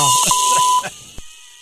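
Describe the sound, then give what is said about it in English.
A steady, high-pitched electronic beep holds for almost a second with muffled voice fragments beneath it, then cuts off, leaving a brief thump and near silence. “He loves that beeper.”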